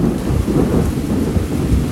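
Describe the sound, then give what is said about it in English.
Deep, continuous thunder rumbles loudly during a real thunderstorm with lightning, rolling steadily with no pause, while heavy, blowing rain hisses underneath the whole time. “Thunder cracks.”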